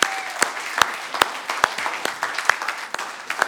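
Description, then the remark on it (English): A church audience claps steadily during a service celebrating Jesus Christ's resurrection, with sharp individual claps standing out from a dense, continuous patter of applause throughout. “The most, yeah, you can clap for that.”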